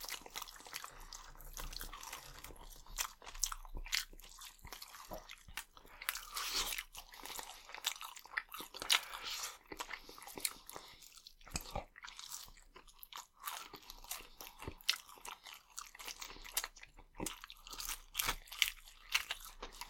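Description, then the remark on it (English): Crunchy chewing of fried chicken thighs, a steady run of crisp, crackling bites and munching that repeats irregularly for the whole stretch, fairly loud with no talking over it. “Back to the chicken. Back to the thighs.”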